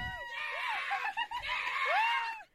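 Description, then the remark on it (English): A recording of a single long, very loud, record-breaking burp measured at 107.3 decibels, lasting over two seconds, strained and raspy with a wavering, rising-and-falling pitch that gives it an almost bleating, goat-like quality. No one speaks over it. “I'm about to play a burp.”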